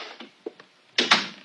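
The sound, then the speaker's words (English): A door swings shut: a few faint clicks and handling noises, then two loud, close-together thuds as it closes and latches, with a short fading tail. “I said close the door.”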